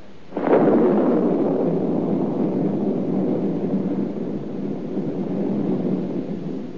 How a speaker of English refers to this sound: Shh, no. That's just the old storm having a last blow. It's all over. It's spring now.